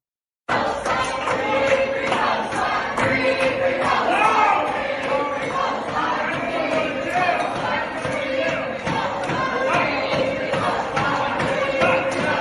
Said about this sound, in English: Here's the moment the protesters decided to storm past a security guard who screamed at them, "No!